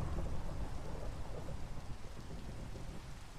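Steady, dense rainfall hisses continuously while a deep, low thunder rumble rolls underneath, loudest at the start and slowly easing off. No voices are present.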